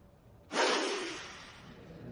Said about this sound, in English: Mr. Phillips's incredulous sniff was a triumph of forensic art.